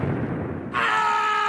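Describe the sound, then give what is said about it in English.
A low rumbling whoosh gives way to a sudden, loud bubble burst as a bubble explodes in a burglar's face, followed by a bright, sustained ringing tone, with no voices. “Explodes in his face.”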